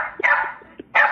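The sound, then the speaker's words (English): A dog gives a whiny, drawn-out vocalization in two bursts, its pitch bending so it sounds like it is saying 'cornflakes'; fairly loud, with no one talking. “There is a dog saying cornflakes.”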